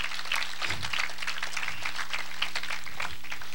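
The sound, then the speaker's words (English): A church audience claps together in a hand clap of praise to God during a sermon, a dense, steady wash of many hands for several seconds with a low hum running underneath. “Oh, someone give him a hand clap of praise.”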